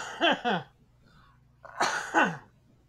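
Two short, harsh bursts, then a pause and a louder, longer explosive burst of a person coughing.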